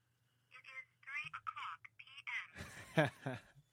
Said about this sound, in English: Oh, your clock just went off. My what? Your watch just went off. Oh, it did. Yeah, yeah. It is 3:00 p.m.